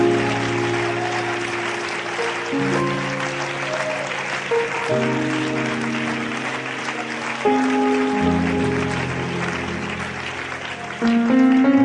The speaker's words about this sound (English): Give the Lord a good hand clap of praise if you would.